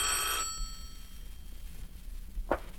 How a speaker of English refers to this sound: What? The phone.